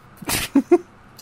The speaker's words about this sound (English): It's a random pigeon.